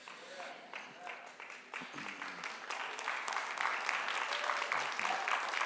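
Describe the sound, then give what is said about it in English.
An audience, mostly women, claps steadily, a dense crackle of many hands that grows a bit louder and fuller as it goes on, with some faint voices and cheers mixed underneath. “Like 90% of the women are clapping.”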